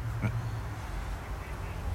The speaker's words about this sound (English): There goes my duck. I don't know if you can hear him.